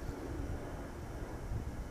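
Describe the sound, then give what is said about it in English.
A steady, low rumbling roar of an airplane passing overhead, fairly quiet, with a broad wind-like hiss and no voices. “So the first one is, there's a plane.”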